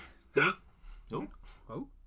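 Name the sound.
hiccup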